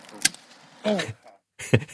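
Brambles being pruned: a few sharp, crisp snips of cutting blades, spaced unevenly, with rustling stems and a brief squeaky, tonal scrape in between.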